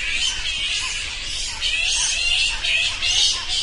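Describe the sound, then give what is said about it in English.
Bats chattering in a dense stream of shrill, high-pitched squeaks and chirps, pulsing in quick overlapping bursts, fairly loud, with no voices. “Bats.”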